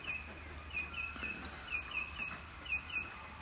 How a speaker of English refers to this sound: Listen to this. Do they sound like they're getting caught up, the birds? It doesn't sound to me like they're getting caught up. Sounds like they're rejoicing.